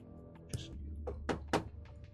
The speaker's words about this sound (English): I think pretty early you hear a knock on your door.